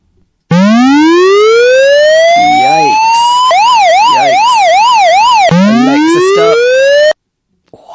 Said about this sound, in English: So we've got Siren Alarm, Alexa, open Siren Alarm.